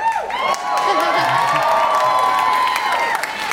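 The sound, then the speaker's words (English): A crowd cheers loudly and steadily, with high excited shouts and whoops layered over a sustained roar of voices, plus scattered clapping underneath. “Remember when you thought we were cheering for your new job?”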